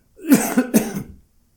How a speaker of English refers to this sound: So if you do that, excuse me while I cough.